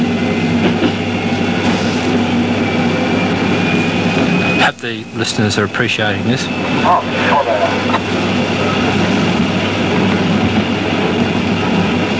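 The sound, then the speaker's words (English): A tram with a Westinghouse electric motor rumbles loudly and continuously with a steady motor whine as it picks up speed; a voice speaks briefly over the noise partway through. “Feel that surge of acceleration? Aye. Westinghouse motor.”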